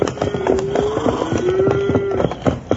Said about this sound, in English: Bill, listen, ain't that cattle I hear? It sure is, Jingles. You sure had it figured right, Wild Bill. Here they come. I'll stay back in these rocks and let them go on by.